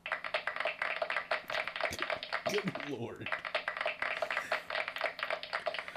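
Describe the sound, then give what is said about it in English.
A steady crowd applause sound effect played from an iPad effect board, a dense crackle of many clapping hands, runs for the whole clip at an even, fairly loud level, while a voice briefly exclaims partway through. “I say we give Cody an applause.”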